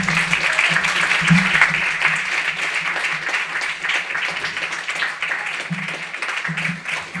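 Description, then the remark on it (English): An audience at an open mic reading applauds steadily for several seconds, a dense, continuous patter of many hands clapping at once, with a faint murmur of voices underneath. “Yeah, you can applaud if you want.”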